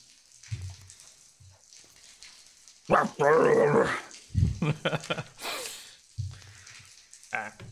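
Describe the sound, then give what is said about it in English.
A voice imitates snarling gnolls, hyena-like creatures: low guttural growls and harsh bursts, with a loud raspy cry in the middle, over a steady hiss of background noise. “There's like a constant growling of Gnoll in the background as you hear these voices shouting down at you.”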